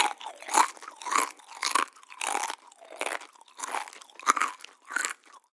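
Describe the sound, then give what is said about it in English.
Crisp crunching of someone chewing crunchy food, about eight to ten steady bites in a regular rhythm, each a loud brittle crackle with brief pauses between, no talking. “It's chewing.”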